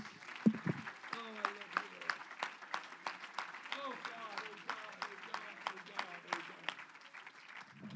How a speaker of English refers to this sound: Somebody, come on, let's clap our hands to the Lord.